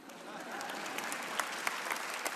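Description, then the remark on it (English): An audience claps steadily, a dense wash of many hands with sharp individual claps popping out, sustained at an even loudness with no voices on top. “Every relationship, guys, is high maintenance. Clap again.”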